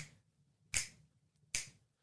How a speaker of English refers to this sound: But you start with three jitterbugs to set the tone. Clap, a click, click.